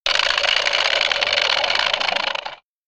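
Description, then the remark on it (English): A voice imitates a jackhammer with a loud, rapid, rattling burst of buzzy noise, sustained steadily for over two seconds before cutting off abruptly. “So here is my actual impression of a jackhammer.”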